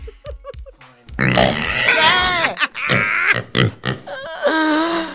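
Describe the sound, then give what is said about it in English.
Pigs grunt in a few short, low bursts, then break into loud, drawn-out squeals with wavering pitch, overlapping and continuing almost without pause. “Look at all these pigs!”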